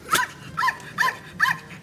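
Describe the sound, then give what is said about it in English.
A small mixed-breed dog, a mutt, barks four times in a steady rhythm, each bark short and high-pitched with a yappy edge, clear with no talking around it. “what kind of dog is Arnie? He's a little bit of everything. He's a little mutt.”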